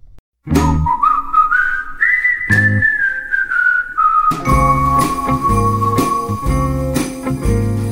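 A bright whistled melody glides and bends over the lively intro of a Christmas song, with steady beats, low bass pulses and tinkling bell-like accents, growing fuller after a few seconds; no one speaks.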